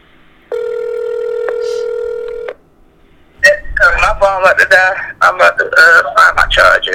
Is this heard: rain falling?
no